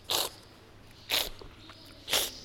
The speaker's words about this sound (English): Strippaggio, or stripping. It's slurping, essentially. You slurp, drawing in air in the corners of your mouth, which aerosolizes the oil and makes the aromas go back